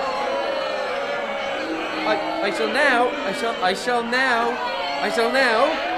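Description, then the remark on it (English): An audience of many voices shouts and jeers over one another to stop a speaker giving a science talk from finishing, loud, with rising wavering yells swelling throughout and drowning out any single speaker. “The crowd aren't going to let him finish.”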